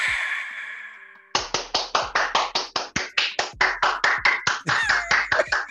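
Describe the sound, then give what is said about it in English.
Steady, rapid, fairly loud hand clapping, about four sharp claps per second continuing for several seconds after a brief tail of sound fades out at the start. “I might never stop clapping.”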